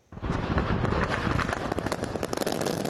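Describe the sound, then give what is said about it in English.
Fireworks go off on a stretch of the Coquihalla highway after a crash, in a dense, continuous barrage of sharp pops and crackles, loud, with rapid overlapping bursts filling the whole stretch and no voices. “The crash that sparked thousands of explosions in the air, next on the NewsHour.”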